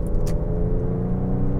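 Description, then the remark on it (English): A steady, loud low roar of road traffic in a neighbourhood, with cars rushing by at about 60 miles an hour in a 40 mile an hour zone, and no one talking. “Look how fast these people are driving. They're doing 60 miles an hour in a 40 mile an hour zone, I think.”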